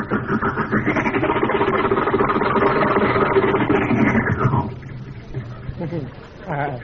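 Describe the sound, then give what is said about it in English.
A new car's engine runs loud and steady with a rough, grinding noise from its stiff gears, the driver having forgotten to use the clutch, for about four and a half seconds, then cuts off, and a voice is heard briefly afterward. “Gears are a little stiff, you know. New car.”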